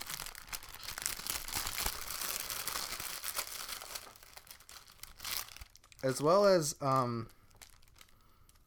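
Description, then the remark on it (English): A plastic bag holding a bracelet or necklace is handled for several seconds, a dense rustling crackle, then a woman briefly speaks as the crinkling fades. “This is a bracelet or necklace? Inside another plastic bag.”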